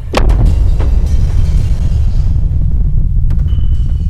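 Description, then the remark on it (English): A loud explosion bursts at the start and rolls into a heavy, continuous low rumble that fills the rest of the moment, with no voices. “I mean, this movie did at least have explosions.”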